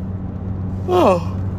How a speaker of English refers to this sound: Oh, I hate yawning first thing in the morning.